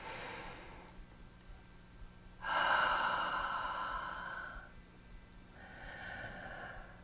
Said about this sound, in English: I encourage you to just slow down your breathing. Good job. Nice deep breaths.